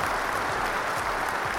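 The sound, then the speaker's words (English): A steady round of applause from many hands, dense and continuous for a couple of seconds at moderate loudness, with no voices over it. “Give Dark Cloud a round of applause, baby.”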